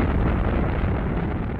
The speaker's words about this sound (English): Here's an extract from our Audible series, The Space Race, of the launch of Apollo 12.